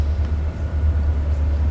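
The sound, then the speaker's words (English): A deep, steady rumble of a train, the old 720, rolling past during a baseball game, a continuous low drone that holds at an even loudness throughout with no voices over it. “I think I hear the first train of the game.”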